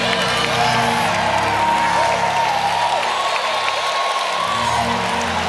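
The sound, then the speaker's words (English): An audience claps and cheers steadily for several seconds, a dense, loud wash of applause with whoops and shouting voices mixed in throughout. “Clapping is the cure for depression, anxiety, stress, and over-againstness.”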